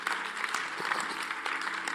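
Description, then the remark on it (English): An audience claps steadily for the full two seconds, a dense, even wash of many hands with no pauses or rhythm and no voices over it. “I thought you were clapping. You didn't clap well.”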